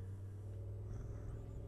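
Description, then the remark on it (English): A little blue dune buggy's engine rumbles steadily, a low droning hum holding an even level throughout with no voices. “I think it's a car. It's a dune buggy. Little blue dune buggy.”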